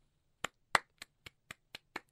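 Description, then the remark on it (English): One person gives themselves a slow clap, clapping seven times in a steady, even rhythm, each clap sharp, with no talking and near-silence between. “Slow clap myself.”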